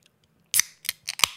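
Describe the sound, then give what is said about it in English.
A beer can's tab is pried open to crack the first beer of a Halloween power hour, in a quick series of four sharp metallic clicks and snaps, bright and crisp, with a short hissy edge. No voices are heard. “And with that said, I'm going to go ahead and crack the first beer of this official, horrendous, terrifying, truly terrifying, Solo Halloween Power Hour, brought to you by Live from the Studio.”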